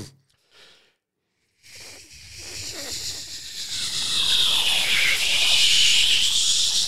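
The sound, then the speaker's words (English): A voice imitates a fighter jet taking off and doing a loop the loop: a couple of short breathy puffs, a brief pause, then a long rushing hiss that swells louder, with a swooping dip and rise in pitch toward the end. “Yeah, that was a fighter jet. Took off much quicker.”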